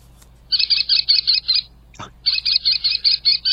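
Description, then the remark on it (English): An American kestrel, a falcon, gives rapid series of sharp, high klee-klee calls, two bursts of about six or seven notes each separated by a brief click, loud, not slowed down, with no talking. “An American kestrel.”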